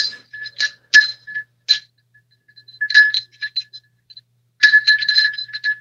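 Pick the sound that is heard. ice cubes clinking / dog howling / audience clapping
ice cubes clinking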